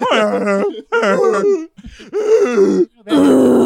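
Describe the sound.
A voice imitates a moose call with four loud, drawn-out groaning bellows, each wavering in pitch, separated by brief pauses and with no words spoken.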